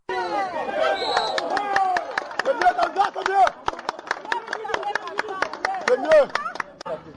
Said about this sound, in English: These villagers of eastern Cameroon applaud as soldiers of the Rapid Intervention Battalion of the Cameroon Armed Forces arrive in their locality.